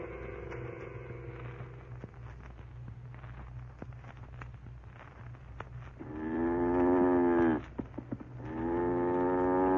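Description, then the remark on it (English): A cow bedded down for the night moos in long, loud, harmonic calls, one near the start and two more later, with a steady low hum and scattered faint clicks in between. “Cow's bedded down for the night.”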